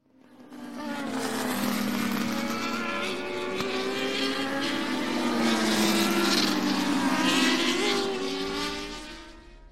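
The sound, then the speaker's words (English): A white Hayabusa sport motorcycle with golden decals keens with a high, whining harmonic tone as it catches up from behind, its pitch shifting up and down as it revs. The sound holds steady, swells louder toward the end, then tapers off. No voices. “Pepe smiled at the thought, but his beautiful reveries were cut short as he heard the unmistakable keening of a Hayabusa behind him.”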